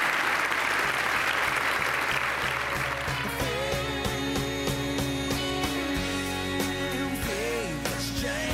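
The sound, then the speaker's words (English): An audience claps steadily, a dense crackle of many hands that stays loud throughout, applauding New Yorker writer Jane Mayer at the end of a lightning round in a Climate One conversation, while a bright tonal musical sting with sustained notes rises over the clapping partway through. “Let's give Jane Mayer a round for making it through that.”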